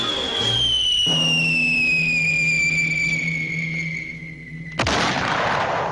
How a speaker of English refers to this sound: And since falling coyotes don't really whistle, the fact that he used this classic artillery whistle basically for a falling coyote cracks me up every time.